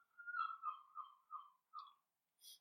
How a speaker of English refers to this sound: Seagulls. Well, live by the sea, you get seagulls. They're beautiful, actually. I find them beautiful because I was not brought up here, I was not born. People here hate them, but I actually love them. It's part of life, being by the sea.